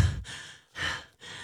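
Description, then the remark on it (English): A person imitates the heavy, nervous breathing they made while going to serve in a game in a very noisy room: three loud, breathy exhalations and inhalations in quick succession, with short silent gaps between them. “The only thing I could hear in this very noisy room was my breath.”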